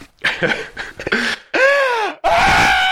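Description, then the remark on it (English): A voice imitates a toddler's strained, breathless crying, at the stage of crying without breathing: choppy gasping sobs, then two long, high wailing cries with a sharp catch between them, loud. “And I didn't realize he was at that really, really scary stage where he's crying but it's not breathing.”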